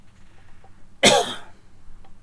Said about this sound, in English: Sorry, I had to cough there.